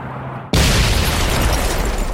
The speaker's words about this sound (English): It detonated when he touched it, and the force of the explosion essentially eviscerated him. The blast partially exposes his heart.